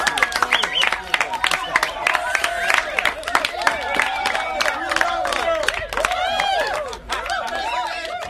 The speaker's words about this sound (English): With that applause coming from the crowd gathered at the city stadium, we end the 7th episode of our Soccer Made in Africa, Much More Than a Game radio novella.